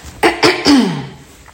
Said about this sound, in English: Okay, to clear my throat, I'm back.